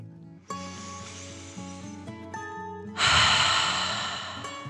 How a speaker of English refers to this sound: And with that, they both took a deep dragon breath in and out.